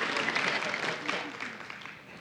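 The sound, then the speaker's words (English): An audience claps for news of a baby due in March, in a steady, dense patter that holds fairly loud for about two seconds, then begins to thin and fade toward the end. “Yeah, you can clap.”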